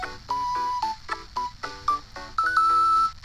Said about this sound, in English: Oh, there it is again. It's like organ reggae.